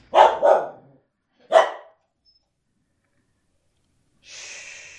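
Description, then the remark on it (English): A dog barks three times, two quick barks followed by a single one a second later, then quiet before a soft hissing noise rises at the end. “Wait for the dog. Thanks, dog.”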